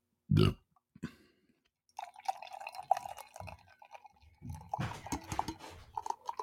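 A short, low blast, then after a pause a long, buzzy, sputtering fart with a wavering pitch that drags on for several seconds, loud and close, with no talking.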